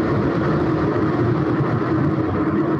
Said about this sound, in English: That a plane anyway? No, that's the train. That's Rahm Emanuel driving the train. Go ahead. It just passed.